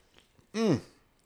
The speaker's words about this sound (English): Moving on. Let me have a sip of this drink.